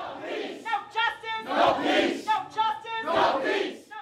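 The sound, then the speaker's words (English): A protest crowd inside police headquarters chants loudly in unison at officers behind glass, fists raised, voices rising and falling in a steady rhythmic pattern of repeated shouted phrases, punctuated by bursts of cheering and yelling. “They raised their fists at the officers they could see behind the glass and chanted at them.”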